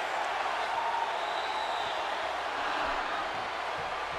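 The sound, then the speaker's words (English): A wrestling crowd at WCW Monday Night Nitro cheers as Chris Jericho hits a triangle dropkick on Mike Awesome in the opening contest, in a steady, roaring wash of noise that holds at an even, fairly loud level throughout, with no clear breaks or individual voices standing out. “Jericho now with that patented triangle dropkick as he pops the crowd.”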